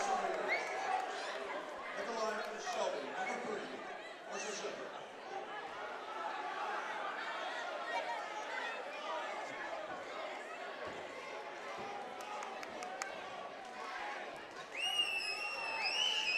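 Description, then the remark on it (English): A packed basketball gym crowd at Willard reacts unhappily to a referee's foul call, a loud, sustained swell of shouting and murmuring voices filling the arena for the whole stretch, with sharp high squeaks near the end. “Willard crowd doesn't like it.”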